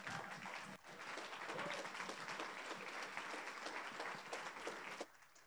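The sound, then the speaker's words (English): A church crowd applauds steadily to welcome a speaker as he walks up, a dense wash of many hands clapping at a constant level for about five seconds before it drops away abruptly near the end. “He's walking slow, so you keep on clapping.”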